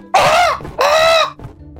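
Two loud, harsh owl screeches in quick succession, each lasting about half a second with a raspy, harmonic-rich tone that sags slightly in pitch at the end, followed by quiet.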